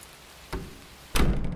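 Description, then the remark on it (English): A house door is unlocked with a key and pushed open in the dark: a short click or clunk, then a louder, fuller thunk with a brief rumbling tail, with no talking. “In the glow of my cell phone, he finally got the door open.”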